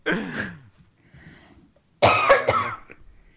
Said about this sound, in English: I still have my cough, guys.